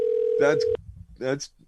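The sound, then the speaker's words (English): A steady electronic phone tone, like an outgoing call ringing, holds for under a second and then cuts off abruptly, with voices speaking over and after it. “I know when the phone is going to be answered.”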